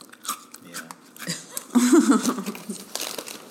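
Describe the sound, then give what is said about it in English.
Crunchy chewing of Teddy Grahams graham cracker cookies, with irregular crackly bites and crinkling that swell in the middle, and a brief low voice murmuring underneath. “Can you hear me chewing my teddy grams?”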